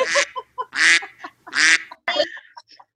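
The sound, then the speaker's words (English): Loud, harsh duck-like quacks ring out, roughly four nasal bursts in quick, uneven succession with brief gaps between them and no one talking. “She's quacking up.”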